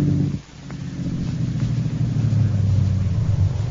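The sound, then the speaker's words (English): A car engine hums low and steady, dipping briefly before settling into a constant idling rumble as the vehicle pulls into a workyard garage to park next to a truck. No voices. “Send into the workyard and park in our garage. And next to the truck there.”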